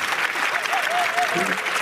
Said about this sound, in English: That's a solid 8 out of 10 clap. Yeah. We are in the Amazon arena. So I'll notch it down to a 7. Home crowd.